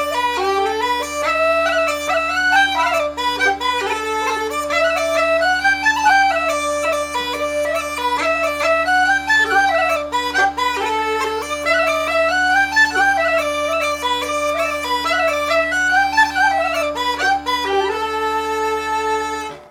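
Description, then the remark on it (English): A bagpipe plays a lively traditional tune, its ornamented melody running over a steady, unbroken drone. Loud throughout, with no talking. “the weekly show where I explore the likely repertoire of 18th and early 19th century bagpipers using historic music collections, written for bagpipes or not, and played on Uilleann pipes, Highland pipes, and whistles. Let's hear some tunes.”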